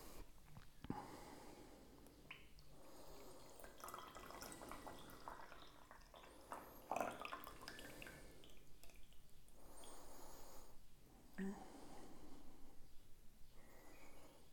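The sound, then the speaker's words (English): Brewed green tea being poured out, drained of all its water, in a steady, gentle trickle that swells and eases a few times, with small drips in between. Quiet, with no talking. “Then let's pour it.”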